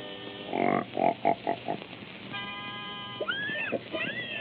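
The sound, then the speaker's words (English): A quick run of loud, nasal grunts and oinks from Mickey's singing pigs, Mr. and Mrs. Patty Pig, as they are brought into pitch, followed by a held squealing tone and a few rising, swooping squeals, with no talking. “Wait till you hear my singing pig.”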